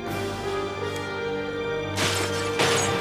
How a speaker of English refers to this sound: And there's Boba Fett going around smashing the controls in the reactor. And that is going to put the Jedi Cruiser in a bad, bad way.